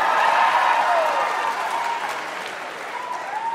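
A live audience claps on a call for applause from those who smoke weed to deal with anxiety, a dense wash of many hands with scattered cheers and whoops, sustained at a fairly even level before easing off slightly near the end.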